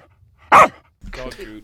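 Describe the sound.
A single sharp, loud dog bark rings out, followed a moment later by a person speaking briefly.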